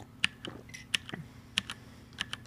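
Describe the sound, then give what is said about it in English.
Fingers tap on a computer keyboard in an uneven rhythm, recorded as ASMR, a dozen or so crisp clicks with a few sharper, louder keystrokes standing out, quiet with no voices. “I mean, the ASMR that I like to do is for the only one that I like, and that's the one I recorded, was the keyboard tapping.”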